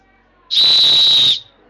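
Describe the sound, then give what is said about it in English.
A single loud, piercing blast from a plastic rescue whistle called a rescue howler, held steady for nearly a second at a shrill high pitch, then cutting off abruptly. “I've got a little plastic one called a rescue howler, I guess, because maybe it's a different pitch level”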